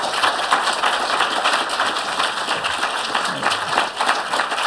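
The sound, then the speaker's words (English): Sustained applause from an audience at an Edinburgh International Book Festival event, applauding authors Clemens Setz and Ned Beauman: many hands clapping in a dense, steady crackle that holds at an even, fairly loud level for nearly five seconds, with no voices over it. “And another round of applause for Clemens Setz and Ned.”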